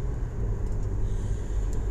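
A steady, low car-interior rumble fills the space, a constant engine and road drone with a faint high hiss on top and no voices.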